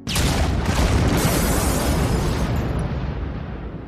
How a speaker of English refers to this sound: Were they on the first floor? Yeah. No, because the explosion didn't come from the first floor.